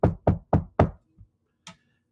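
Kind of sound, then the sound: impact, knocking on a door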